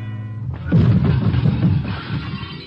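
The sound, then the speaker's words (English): A loud crash erupts after a brief low hum, followed by a couple of seconds of dense, rattling clatter as a serving cart loaded with dishes is shoved and smashes into a wall. “Then my elbow bunched an object beside me, a serving cart loaded with dishes. I push it a few inches. The wheels don't make any noise. I give it a shove towards the wall and wait.”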